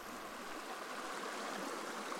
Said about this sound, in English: Even in the hottest, driest summer, this creek is running. It's all spring-fed. You know, it's beautiful. It's one of the only places around where you can still catch native trout.